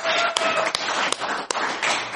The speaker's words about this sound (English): That deserves a round of applause, I'd say. Right?